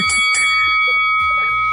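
A bell rings out loud to signal the start of a round, two quick strikes at the start, then its bright metallic tone hums steadily for nearly two seconds with no voices.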